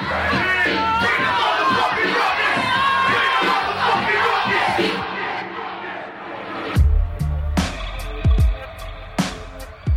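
A dense concert crowd at a show in New York roars, cheers and chants together, loud, for several seconds; the crowd noise then gives way to heavy low thumps and sharp bursts of noise.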